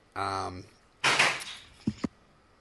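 A brief droning tone gives way to a loud door slam crashing shut, followed by two quick, sharp knocks as it settles.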